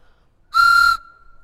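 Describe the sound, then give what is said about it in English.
A single short blast from a toy train whistle, bright, with a steady reedy tone that holds for about half a second before cutting off. “That's how you blow a train whistle.”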